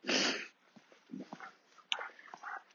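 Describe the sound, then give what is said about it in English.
Dogs scuffle: a loud, rough burst of snarling noise at the start, then a run of short huffs, snorts and gruff grunts as they tussle. “And that was quite a good tussle between the dogs there.”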